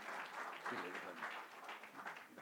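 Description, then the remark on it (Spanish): A church audience applauds the Lord in a steady, dense wash of clapping that holds for a couple of seconds, with voices calling out over the sound. “Denle un fuerte aplauso al Señor, hermano.”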